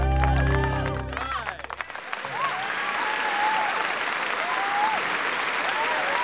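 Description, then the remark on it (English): Loud, sustained applause from a large audience at the Playhouse at the end of the Shadowlands Players' remake of a John Ford epic, dense clapping with a few shouted cheers, following a brief swell of music that fades out in the first two seconds. “A roar of applause from the audience demonstrates an exciting end to this classic remake of the John Ford epic and another evening at the Playhouse.”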